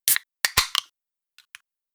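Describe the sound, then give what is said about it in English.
A drink can snapping open: a cluster of sharp metallic clicks and a brief fizzy hiss, followed by two faint little ticks, with no voices. “Oh, the can effect there was great.”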